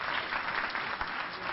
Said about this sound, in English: Clap your hands, somebody, and thank God.